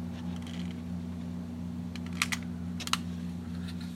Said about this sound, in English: Then he places some wood in the front and crumples up a few flour bags to start the fire. Light the match now. Paper on fire.